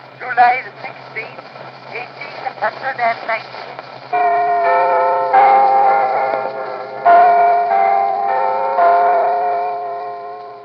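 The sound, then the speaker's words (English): An 1890 recording of Big Ben in London chiming, thin and hissy: after a few seconds of muffled voice, four loud strikes ring out, each leaving a long, humming overtone that overlaps the next. “But in terms of sounds from the environment, there's a recording from 1890 of the chiming of Big Ben in London.”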